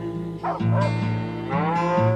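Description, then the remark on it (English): Cows moo on a farm in long, low, droning calls that overlap and run almost without pause, fairly loud, with no voices alongside. “And it's winter on the farm and the snow on the cows, and that's a beautiful, really, really touching song.”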